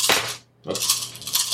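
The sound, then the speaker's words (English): Seven dice are rolled for a reaction roll in a game. They clatter and rattle across a hard tabletop in two bursts, bright clicking hits separated by a brief pause, fairly loud, with no talking; one die falls off the table. “Roll 7 dice. 7. Yeah. Yeah. That one fell off.”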